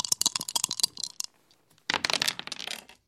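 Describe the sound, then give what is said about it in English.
Dice clatter and rattle in two quick bursts, a flurry of sharp clicks tumbling across a hard surface, then a short pause before another round of rolling. Fairly loud, with no voices. “Okay, let's roll those dice.”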